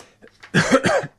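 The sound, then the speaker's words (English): A person clears their throat once, a short rough, guttural burst lasting about half a second, preceded by faint soft breathy noises and followed by silence. “Starting to clear my throat here.”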